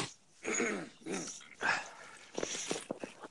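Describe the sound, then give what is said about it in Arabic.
Fairly loud throat clearing and coughing: three harsh, drawn-out rasps, then a quick run of short, choppy coughs, with no talking. “خلاص الكحة الله يستر.”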